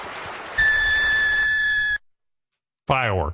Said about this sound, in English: Firework.